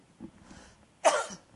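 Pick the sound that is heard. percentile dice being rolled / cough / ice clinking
cough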